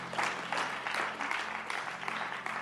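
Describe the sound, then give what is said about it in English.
An audience at a church service claps steadily as it receives the speaker, Archbishop Patrick Bruce, with a standing ovation: a dense wash of many hands applauding together at a fairly even level, with no voices standing out above it. “Your clapping is the clapping of somebody.”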